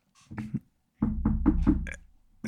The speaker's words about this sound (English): There's a knock on your door.